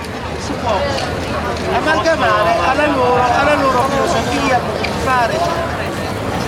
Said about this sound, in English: That certainly sounds Italian. Well, those are the streets of Milan, always buzzing with life. When we were there, it happened to be Fashion Week, but the hustle and bustle isn't unusual for this city.